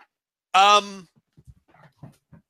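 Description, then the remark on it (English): A dog lets out one loud, high, drawn-out whining cry lasting about half a second, followed by a few faint, scattered soft noises. “I don't know what this dog's doing. He's being weird, but there we go. I'm back now. He just keeps crying.”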